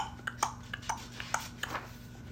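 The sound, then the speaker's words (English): A voice imitates horse hooves clopping with a string of about seven sharp, hollow tongue clicks in an uneven trotting rhythm, fairly quiet, with no talking. “He can go like horse feet.”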